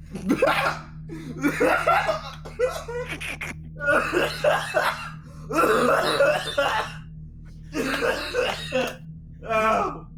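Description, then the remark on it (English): Laughter breaks into a fit of harsh, repeated coughs, with several loud bursts over a steady low hum and no clear speech. “Laughing until you start coughing.”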